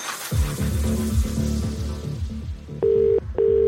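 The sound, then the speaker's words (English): A rapid run of electronic phone-dialing beeps plays for a couple of seconds, then two steady ringing tones follow as the call connects. Clear, no voices. “So going to make a call across the Hits Network.”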